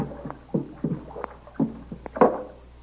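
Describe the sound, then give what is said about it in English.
Repeated soft splashing strokes of paddles dipping into water as a canoe is paddled toward a dock, roughly regular, with a low steady hum underneath and no voices. “Stop paddling, Kolo. I'll bring us up alongside now.”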